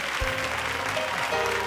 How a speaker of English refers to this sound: I say, can you clap your hands and give God praise really quickly? I say, can you clap your hands and give God praise for real? For real, for real, for real.